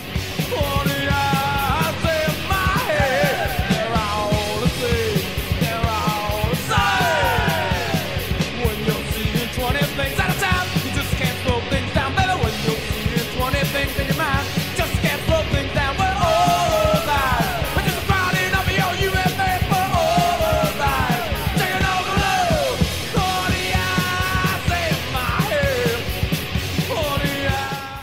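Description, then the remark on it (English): A loud, dense punk metal track with raw screamed and yelled vocals soaring over heavy distorted guitars and pounding drums, sustained at full intensity throughout. “I love the scream that opens this song.”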